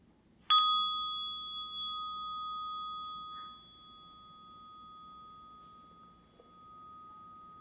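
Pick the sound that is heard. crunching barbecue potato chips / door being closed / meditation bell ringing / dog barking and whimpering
meditation bell ringing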